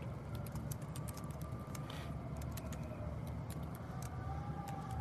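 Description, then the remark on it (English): Faint fire truck sirens wail far off beneath a steady rumble of traffic and outdoor noise, with light tapping clicks scattered throughout. “There, I don't know if you guys can hear it, but there are some fire trucks in the distance.”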